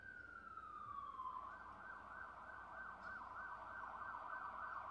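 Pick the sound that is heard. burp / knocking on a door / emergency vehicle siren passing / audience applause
emergency vehicle siren passing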